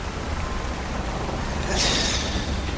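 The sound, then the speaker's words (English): Steady, dense hiss of heavy rain pouring outside, filling the whole clip with a constant wash of noise that swells briefly louder midway. No voices. “It is torrential rain outside.”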